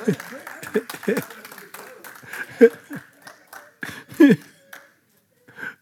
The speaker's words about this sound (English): Give both Peter and Jesus a good hand clap. Amen.